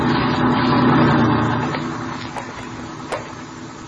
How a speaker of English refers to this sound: Watch the truck, Ben.